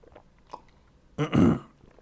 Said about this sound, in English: Oh, crap. Hang on. Just swallowed air down the wrong pipe here. Hang on.